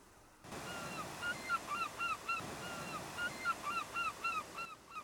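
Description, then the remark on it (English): A white bird calls far overhead, over and over in quick, honking bursts, fairly loud and clear, above a steady wash of surf or wind that fades in and out at the edges. “And far overhead, a white bird called once.”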